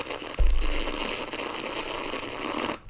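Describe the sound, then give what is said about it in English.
A long, airy slurp of wine drawn through the lips to aerate it in the mouth while tasting, a steady gurgling hiss lasting over two seconds after a soft bump, then cutting off abruptly. No one speaks. “Taste wine, you know, you're supposed to, like, swirl it around, you sniff it, and then you sip it, and there's another step where you slurp. I'll do the slurping.”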